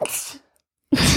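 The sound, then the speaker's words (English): A person sneezes, a sharp burst of breathy noise, then a short silence and a second loud, broad burst follows. “Bless you”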